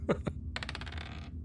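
Two sharp clicks, then a quick rattling clatter of dice tumbling across a hard tabletop, the taps slowing and fading out within about a second, the roll showing 12. Fairly quiet, with no voices.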